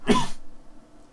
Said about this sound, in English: and I don't know if you've heard, I'm still coughing. That's still a thing.